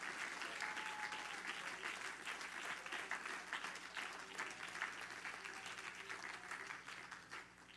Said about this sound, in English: That's all God gets today is just a little petty hand clap.